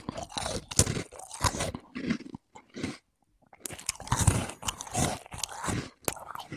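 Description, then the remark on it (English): Loud crunching of crisp food being bitten and chewed in repeated bursts, with a brief near-silent pause midway before the chomping resumes. “Wow, you are making me hungry with those crunches.”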